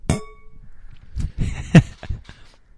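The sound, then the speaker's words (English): Glasses of booze clink together once in a toast, a bright ringing tone that fades over half a second, followed by a series of softer knocks and clatters as they are set down, in an apartment in Jersey City. “Let's do another toast.”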